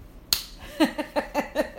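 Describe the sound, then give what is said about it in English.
A single sharp hand clap rings out, then a brief pause before a quick, even run of about five more claps, with nobody talking. “Just clap.”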